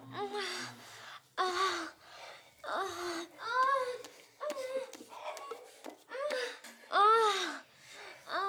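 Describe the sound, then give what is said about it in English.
Breathy moans and sharp gasps of lovemaking repeat in quick, uneven bursts, with rising and falling voiced tones. No words are spoken. “The sound of making love.”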